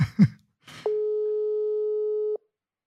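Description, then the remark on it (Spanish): A brief burst of muffled voice and handling noise, then a single long, steady electronic ringback tone from a call to a mobile phone sounds for about a second and a half before cutting off, with no answer. “No lo va a coger como siempre, que no lo coge. Nunca lo coge. Estás liberado. Te lo juro. Estás liberado. Llama otra vez.”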